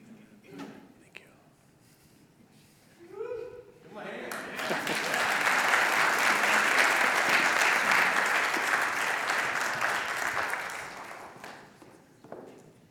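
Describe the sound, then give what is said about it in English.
After a brief spoken voice, a church audience bursts into dense, steady clapping for new members that holds strong for several seconds before gradually tapering away. “I'm glad somebody led in clapping because I was getting ready to.”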